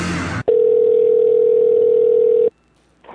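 telephone dial tone

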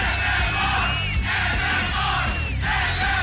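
crowd cheering and yelling

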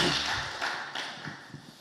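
audience clapping hands

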